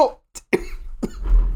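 A close, harsh coughing fit: several sharp, explosive coughs in quick succession, ending with a rough, wheezy rasp as the person struggles to catch their breath.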